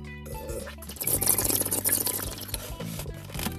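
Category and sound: food or drink, drinking water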